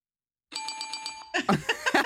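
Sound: bell ding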